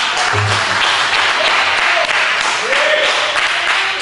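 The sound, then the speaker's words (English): A crowd claps steadily in a dense, continuous wash of applause that holds at an even, loud level throughout, with faint voices calling out beneath it. “Now, you clap, but you didn't clap because you believe that God is going to move.”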